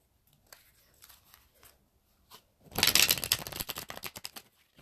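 Tarot cards being shuffled during a reading: a few light, scattered taps and rustles, then a loud, dense burst of rapid flicking and riffling that fills the second half, with no talking.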